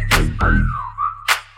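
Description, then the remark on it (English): A single sustained whistle glides and wavers in pitch for under a second, riding over a thumping bass beat with sharp percussive hits at the start and end. “Cause damn that ass fat had to whistle like.”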